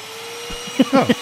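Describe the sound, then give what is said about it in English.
A vacuum cleaner runs with a steady, even drone and a constant mid-pitched whine, while a voice speaks a few short words over it near the end. “Does it get dog hair?”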